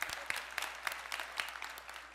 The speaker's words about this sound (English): And and clap for my wife. I mean, good, awesome.